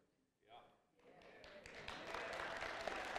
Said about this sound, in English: Yeah, they're clapping for themselves. That's right. Come on. I thought the two of you would stand up and give a standing ovation, but Maybe later.